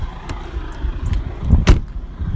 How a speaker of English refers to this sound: So that's a couple of memories as I walk in, as I drive in and pull in here in front of the Lilt car park. You're in Cavan now, so yeah.